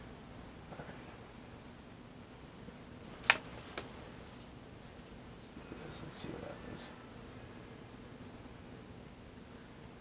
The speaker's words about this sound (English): One-handed typing is always fun, right?